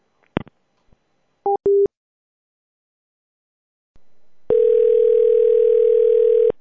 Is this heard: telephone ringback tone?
yes